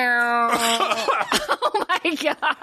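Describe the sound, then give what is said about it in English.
A person coughs and chokes, a strained drawn-out vocal sound giving way to a run of ragged, sputtering bursts and gasps, loud and uneven. “I actually coughed and choked.”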